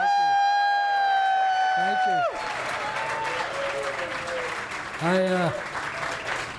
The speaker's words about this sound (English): A living legend in our midst. Everybody give a big round of applause for Coach Lou Holtz.